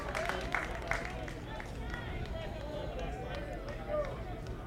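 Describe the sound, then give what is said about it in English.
A steady wash of crowd murmur as fans are still arriving at a ballpark for the first game of a Blue Raiders baseball series, with indistinct voices chattering and a few faint shouts and claps rising briefly over the continuous background hubbub. “Crowd still coming in.”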